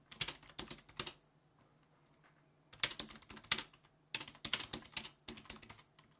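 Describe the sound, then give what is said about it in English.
Rapid computer keyboard typing of a quick message in uneven bursts of clicking keys, with short pauses between flurries and a faint low hum underneath. “So I'm just typing at her a little bit.”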